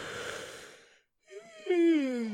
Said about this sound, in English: And guess what my mouth does? My mouth goes, and it makes me make this weird noise like, why did I make the weird noise when I yawn?